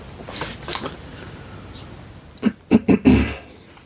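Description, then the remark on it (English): A dog with a bit of a cold sniffs wetly: a couple of soft snuffles, a pause, then four quick, louder congested snorts in a row, with no talking. “Sniffing, he's got a bit of a cold. He'll have to see the vet tomorrow.”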